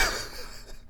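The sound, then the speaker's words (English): A single sharp sneeze bursts out at the start and quickly fades into a breathy tail, with no talking over it. “Oh, no. Bless you.”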